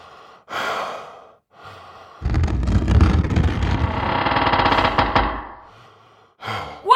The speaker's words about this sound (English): Harsh breathing proved far too distracting, so I gave her the deets for a great awake apnea doctor and dismissed her.